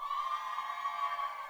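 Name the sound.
audience cheering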